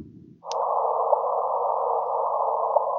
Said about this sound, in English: I found a link on Facebook that somebody had taken the waves of the gravitational waves. Yes. Yes. They put it. They put it to sound. Gosh. I'm sorry, but this is what gravity sounds like.